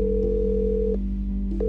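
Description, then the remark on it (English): A phone call to Carl Lentz's new cell phone number rings out through the line, a steady electronic ringback tone that cuts off and starts again, over a low constant hum, with no one answering or speaking. “But our calls went unanswered.”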